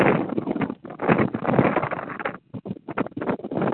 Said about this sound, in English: Got a little gust of wind here.